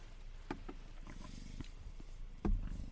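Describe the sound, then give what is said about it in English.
A cat growls low and rumbling, with a few sharp hissing bursts breaking through, the loudest one near the end; no one speaks. “The cat is not playing around.”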